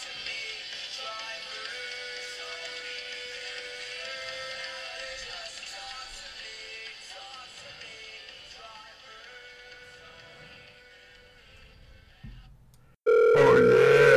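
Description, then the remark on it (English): A telephone rings on an outgoing drunken phone call, with a steady, tonal, electronic line-quality sound held for several seconds, followed by a brief pause and a sudden louder burst of ringing tones. No voices. “Drunken phone call, drunk.”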